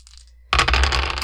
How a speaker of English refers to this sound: And you were rolling, sorry, 1 from Lake and 2 from you. Yep. So 3 dice total.